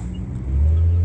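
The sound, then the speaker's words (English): A car engine rumbles low and steady from inside the vehicle, swelling louder about halfway through as if accelerating. No one speaks. “In the car.”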